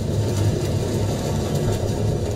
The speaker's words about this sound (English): So I'll play a raw, unfiltered clip for you. You'll hear some boat noise, and within that, there's actually whales communicating.